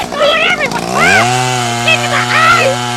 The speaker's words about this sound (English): I'll scramble them with this chainsaw.